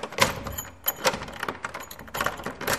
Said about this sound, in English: And suddenly he hears the sound of a rusty key turning the lock of his cell door.